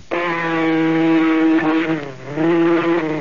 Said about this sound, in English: Gotcha. Now that you got rid of the mosquito... Darn mosquito really bit me.